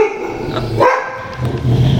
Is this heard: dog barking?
yes